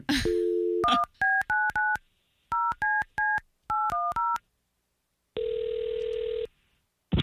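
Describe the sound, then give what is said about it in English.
A phone keypad dialing a number to call back a disconnected caller: about a dozen short two-tone beeps in quick irregular groups, then a longer steady tone like a ringback. No voices, clear. “I mean, we can only legally call him back one more time. No, call him back. Definitely call him back.”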